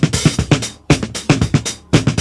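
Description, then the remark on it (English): A snare drum loop, isolated from a multitrack recording and slowed down to match a song's tempo, plays alone and fairly loud: sharp hits ring out in a steady repeating pattern, each with a boomy decay and brief gaps between phrases. “This is just the microphone and the snare drum.”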